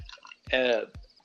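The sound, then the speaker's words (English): A brief splash of a drink being poured into a glass, its gurgling tone rising in pitch as it fills, with a couple of soft clicks around it. “You know, I have to, I've got to pour myself a little drink here because I may get banned from the network for what I'm about to say here.”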